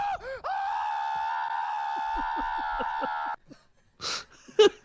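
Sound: man screaming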